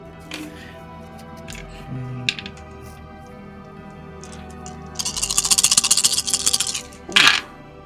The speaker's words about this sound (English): That sounded like a lot of dice.